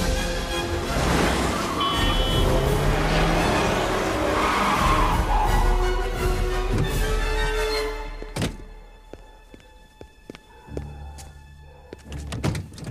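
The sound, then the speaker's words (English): A car engine roars loudly for several seconds, then tires skid as the vehicle brakes hard to a stop, followed by a couple of sharp thunks like a door closing. “No! How dare you! Stop this car immediately! Stop this car!”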